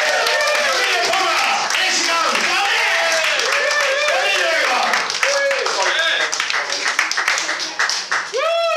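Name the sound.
audience clapping and applause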